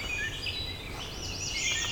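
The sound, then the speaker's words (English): Several songbirds call and sing at once in the morning in the Dundas Valley, including an American redstart, very loud catbirds, a wood thrush and an eastern towhee, with some crows. A steady overlapping chorus of whistles, warbles and chirps over a soft outdoor hush, with no talking. “Got an American red start, I've got very loud catbirds. Very talkative wood thrush too.”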